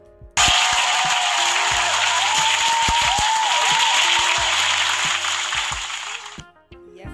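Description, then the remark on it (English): A round of applause bursts in abruptly and holds steady as dense, bright clapping for about six seconds, then cuts off, leaving brief quiet. “So round of applause to you guys first and foremost.”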